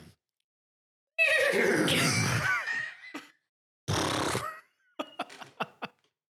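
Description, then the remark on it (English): A person does a loud vocal impression of a horse whinny: a long wavering neigh, a second shorter one, then a few quick snorting huffs, with silence between. “I can't get my head around when you hear a horse or any animal in a Disney movie that it's a person.”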